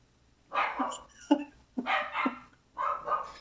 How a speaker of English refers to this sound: Charlie over the road is having a barking conversation with Bertie.